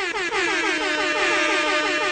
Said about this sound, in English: It could go to penalties and sound the air horn. It's a triple air horn for Newcastle and for Middlesbrough.